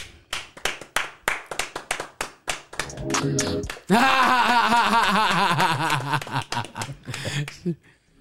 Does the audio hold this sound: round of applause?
yes